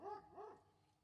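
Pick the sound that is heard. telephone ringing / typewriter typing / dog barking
dog barking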